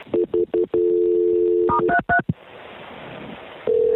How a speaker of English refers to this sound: Okay, I'm going to transfer you to the park, so hang on the line. You're going to hear some clicking, and right now I'm pulling up your lat and your long on my phone here.